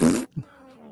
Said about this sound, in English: Did you add farting to this?